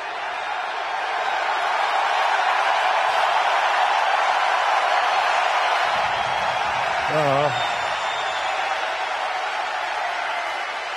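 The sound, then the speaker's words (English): A loud arena crowd at a player's last home game roars with sustained screaming and cheering for the whole stretch, a dense unbroken wall of voices; a brief higher-pitched wavering shout rises above it near the end. “I mean, deafening screams in there and deafening screams from my mouth as well.”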